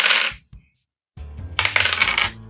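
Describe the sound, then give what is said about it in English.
Dice clatter across a table in two bursts, rolled for a vehicles roll during a car chase in a game: a brief rattle with a couple of knocks, a short pause, then a longer, louder tumbling clatter that rattles to a stop. No one speaks. “Give me another vehicles roll, please.”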